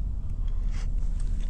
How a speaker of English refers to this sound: Get a little sip of coffee there. There we go. That's a lot better. That's a lot better.